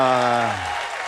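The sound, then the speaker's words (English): An audience of about 14 people claps in a steady, dense wash of noise, while a single voice calls out with a falling pitch during the first half-second. “It's like 14 of you, I think we're clapping.”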